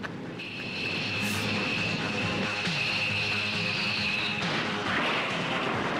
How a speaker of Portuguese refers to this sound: O ventilador pesado. Ventilador industrial aí, pô.